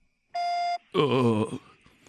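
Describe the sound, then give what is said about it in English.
A single steady, clear electronic voicemail beep, signalling to leave a message, lasting about half a second, followed after a brief pause by a wavering, groaning vocal sound. “This person is not available right now. Please leave a message after the beep.”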